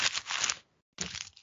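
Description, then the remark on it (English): Something being crumpled up: two bursts of dense, crinkly crackling separated by a short pause, the first longer than the second, fairly soft and with no voices. “Crumple it up.”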